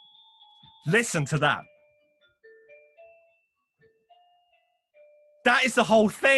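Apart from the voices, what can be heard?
doorbell chime ringing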